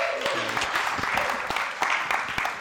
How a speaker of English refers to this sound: And Tonya is going to read this to us. Let's give Tonya a little round of applause, shall we?